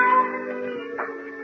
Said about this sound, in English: Suddenly, the silence was broken by the faint crying of a cat.